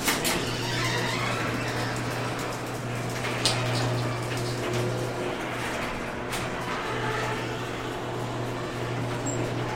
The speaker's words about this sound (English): And the garage door.